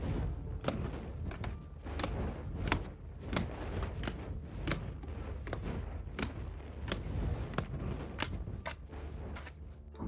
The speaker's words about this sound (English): And I want to imagine as you guys are walking out, you're probably you're not lighting the place on fire. You're your footsteps are as you guys are walking away.